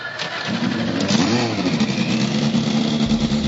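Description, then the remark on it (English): Several race car engines fire up and rev together on command at the start of the Indy Next by Firestone Grand Prix at Road America, a loud, rising and falling mechanical roar with harmonic whine that fills the whole clip without pause. “Here to give the command to start the engines for the Indy Next by Firestone Grand Prix at Road America,”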